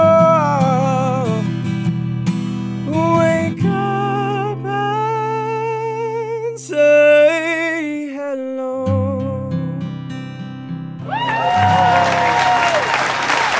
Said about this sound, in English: They're all jumping and stuff, which is really... It's clapping everywhere. Clapping in Studio A and B.